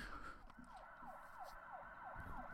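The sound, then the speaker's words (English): An emergency vehicle siren, not of the European type, wails in the background, its tone sweeping rapidly and repeatedly in a steady yelping pattern over a low background rumble, with no one talking. “Oh, I hear sirens in the background, but they're different sirens. They're not our European sirens.”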